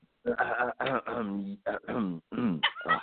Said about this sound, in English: Yeah, I had to clear my throat up a little bit. It was a little something in my throat.